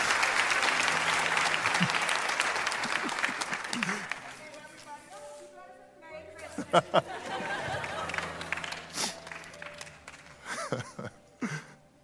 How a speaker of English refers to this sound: Yeah, give her a round of applause.